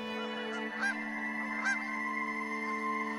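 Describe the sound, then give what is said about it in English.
A flock of migrating geese calls continuously, overlapping honks forming a dense, steady chorus, with a couple of louder honks rising above it, and no one speaks. “The great migrating flocks, spiraling flocks attuned to the turning wheel of the stars.”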